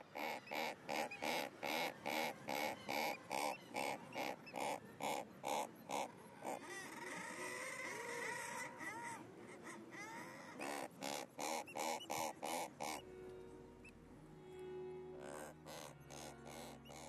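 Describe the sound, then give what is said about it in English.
A razorbill gives a rapid series of short, harsh, reverberant calls from a rock crevice where it nests, loud, with a rougher drawn-out stretch midway and low grunting notes near the end. “And razorbills seem to use their immediate acoustics of the crevices and holes in which they nest and vocalise to produce this short reverberant call.”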